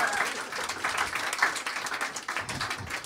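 A live audience breaks into steady applause, dense overlapping claps sustained at a fairly even loudness for about three seconds, with faint crowd murmur mixed in.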